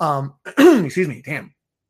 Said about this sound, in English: Every time I start this podcast, I just cough for some reason, but it's just, I don't know.